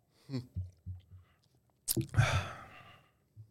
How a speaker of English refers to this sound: Everybody, sip it up, sip it up. You too. … got a mocha.